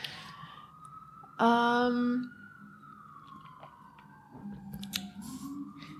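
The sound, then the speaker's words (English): An emergency siren in New York wails with a long, slowly falling tone, steady under low background noise, interrupted early by a brief loud honk-like blast, with faint murmuring near the end. “So the sirens are New York.”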